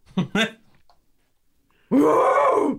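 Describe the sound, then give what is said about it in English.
A person imitates an ape: two short, throaty grunts, a pause, then a loud, sustained guttural hoot that rises and falls in pitch. “What is the point of being on a podcast where you're an actor if you are not going to do the ape noises?”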